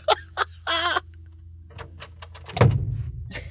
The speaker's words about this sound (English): I felt like I rattled the door handle quite a bit. But slam it. Slam the door.